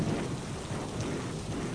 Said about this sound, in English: as it slowly settles back down into regular rain